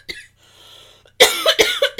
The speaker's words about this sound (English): It's obviously making my wife cough. Choking on it.